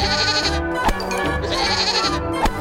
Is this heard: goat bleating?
yes